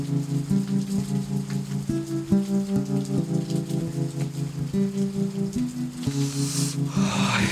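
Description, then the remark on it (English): Steady rain patters on a surface throughout, mixed with low sustained musical tones that shift pitch every half second or so; the hiss of rain swells louder near the end. “I will use my shirt to cover me from the rain.”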